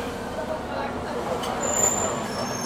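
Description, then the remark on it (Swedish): A bus rumbles past, its steady low engine drone and road noise swelling slightly midway, with faint voices in the background. “Kom det en till buss här också.”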